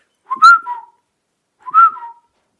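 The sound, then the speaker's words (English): Two short, airy whistled calls, each a quick rising-then-falling note with a slight trill, separated by a pause; a wigeon duck call blown on a whistle, fairly loud. “Name this duck call right here.”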